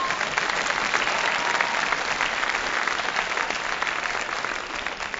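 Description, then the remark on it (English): Steady applause from an audience, a dense crackle of many hands clapping at an even level for about five seconds, fading slightly at the end. “Don't clap, just throw money.”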